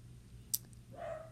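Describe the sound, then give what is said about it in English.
A sharp click, then a single faint, drawn-out bark from a pet dog with a whiny, yelping tone, heard alone against a low background hum. “I mean, pet dog screaming loudly.”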